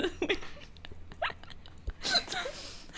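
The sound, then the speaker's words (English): Soft, wet mouth smacking: a handful of brief lip and tongue clicks at an irregular pace, fairly quiet, with a slightly louder, breathier burst near the end and no talking. “Am I, like, smacking?”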